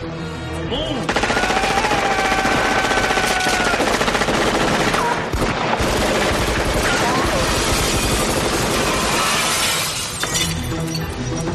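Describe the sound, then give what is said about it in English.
Loud, sustained bursts of rapid machine-gun fire tear through a chaotic gunfight scene in the film Die Hard for about ten seconds, mixed with crashing, shattering glass and dense layered effects. “And that whole gunfight scene is insanely loud.”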